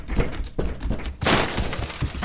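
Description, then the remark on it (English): A few dull thumps, then a sudden loud crash of glass shattering, with bright, crackling fragments that keep spilling and tinkling for a second afterward. “That glass won't hold them much.”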